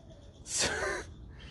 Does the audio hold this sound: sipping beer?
no